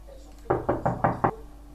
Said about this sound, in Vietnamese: Cô vứt chiếc cặp sách lên giường, sau đó bước tới cửa gian phòng phía trong. Cửa phòng đóng chặt và phó viễn bắt đầu gõ cửa.